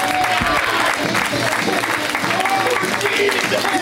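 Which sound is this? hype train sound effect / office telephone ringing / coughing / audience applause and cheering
audience applause and cheering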